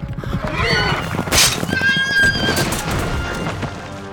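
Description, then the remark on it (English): A horse lets out a loud, shrill screaming neigh with wavering high-pitched tones as it buckles when jousting knights collide, over a dense rumbling background of commotion and clatter. “Arthur heard his horse scream and felt it buckle beneath him.”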